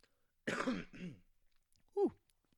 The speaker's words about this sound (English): Excuse me. Been dealing with some cough issues.